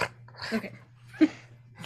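A dog jumping up gives two short barks, the second sharper and louder, separated by a brief pause, over a steady low background hum.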